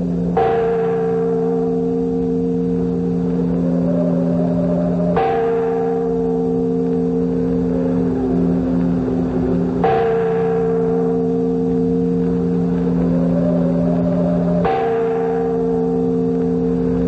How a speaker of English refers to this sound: And as the great bell roused the Venetians